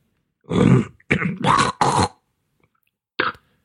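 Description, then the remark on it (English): A person coming down with a cold clears their throat several times in close succession, rough guttural rasps, followed after a pause by one shorter, sharper hack. “I think I'm getting a cold. You know when you sniff a lot and it runs down the back of your throat?”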